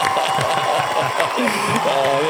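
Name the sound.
applause sound effect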